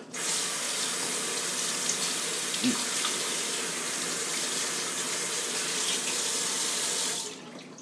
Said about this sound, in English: Now I have to wash my hands.